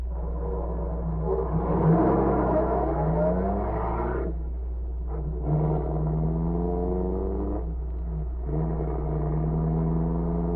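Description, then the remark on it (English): A car engine revs and accelerates hard in pursuit of another car, its pitch climbing through several gear changes with brief drops between shifts, a steady rumble underneath and no voices. “Speed up. Cover's only a little way ahead. All right. Pull alongside.”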